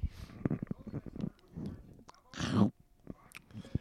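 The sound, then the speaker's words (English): Wet mouth and swallowing sounds over murmured talk, peaking in one loud, thick gulp as a big sip of drink goes down, followed by quieter smacking noises. “Yeah, but for big sips.”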